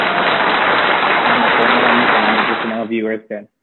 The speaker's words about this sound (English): Okay. But before that, without further ado, let us just give a round of applause to our guests,